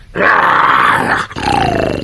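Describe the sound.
A man's voice imitates a bear's growl, voicing a bear guarding a vault in a basement for Jack Benny: a loud, raspy, sustained snarl that breaks briefly and then rumbles on into a second, lower growl, with no talking.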